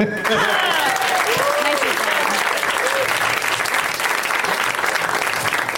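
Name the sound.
studio audience applause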